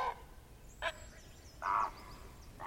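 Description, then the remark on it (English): A heron takes off, giving a few harsh, croaking squawks outdoors, one short call followed by a longer, louder rasp and the start of another, with no one talking. “We saw that other heron. Now it's taking off.”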